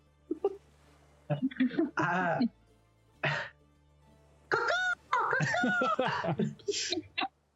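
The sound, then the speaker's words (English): A person imitates a seagull with a series of loud, nasal squawks and warbling cries, broken by short pauses and bursts of breathy, laugh-like sounds. “The strangest seagull you've ever heard in your life.”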